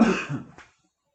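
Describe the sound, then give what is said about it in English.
A loud burst of coughing, a couple of harsh throaty hacks with a choked edge, fading into silence after less than a second. “Well, me coughing, that was choking on an unbelievably good chair shot.”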